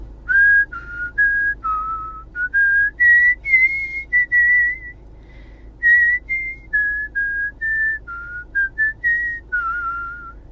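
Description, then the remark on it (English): A woman whistles a melody solo, a clear, pure tone moving through short phrases with brief breaths between notes, steady and fairly loud for about ten seconds. “Here's Ben's girlfriend, …, whistling.”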